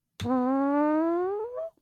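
A single long, loud fart with a buzzy onset that settles into a steady tone, its pitch creeping upward over about a second and a half before it cuts off, with nothing else heard.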